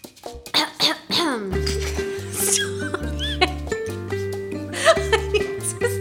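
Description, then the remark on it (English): A few short, rough throat-clearing bursts sound at the start, followed by steady sustained tones that step between pitches like music. “Let me clear my throat.”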